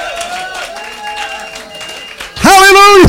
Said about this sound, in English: Come on, give God a hand of praise.